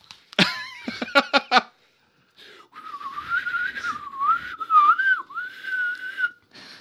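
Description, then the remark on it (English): A few short, harsh vocal bursts, then someone whistles a wavering tune for about four seconds, fairly loud, mimicking the reedy sound of a tin whistle. “He reaches into his back pocket, pulls out his tin whistle.”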